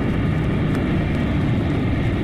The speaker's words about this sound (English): At the command of its Amazon mistress, an immeasurably powerful invisible plane zooms down from the sky, hovers briefly above her, dropping a rope ladder.